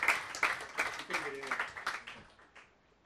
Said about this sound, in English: He is, of course, a 2018 PEN America Writing for Justice Fellow, and even though he's not in the room, let's give him a nice warm round of applause.